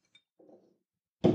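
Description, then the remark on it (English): A single quick, bright clink of glasses in a Thanksgiving toast rings out faintly, followed by a soft low murmur and then a sudden loud burst of voices. “Cheers.”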